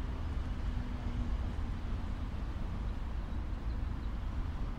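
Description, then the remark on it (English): A steady, low rumble of road traffic with birds fills the outdoor air, constant and fairly quiet without any single car standing out, and nobody speaks. “Listen to the cars and the birds.”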